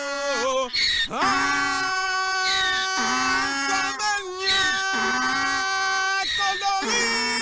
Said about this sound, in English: this great video of the guy singing with his donkey all week. Yes, I love it so much. It's very funny, but it hurt my ears because that donkey just wouldn't shut up.